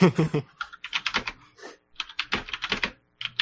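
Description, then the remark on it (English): Rapid clicking of computer keyboard keys in irregular bursts while typing in Slack, clear, with brief pauses between flurries of keystrokes and a louder thump at the start. “You just hear my keyboard going tick tick tick.”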